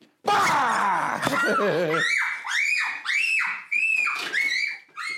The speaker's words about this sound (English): He has a real high-pitched scream, right? And that's not even like the highest he can get. Like, he hits another octave. Like, when he really hits, like, another octave, it's like, rah, like, it's scary.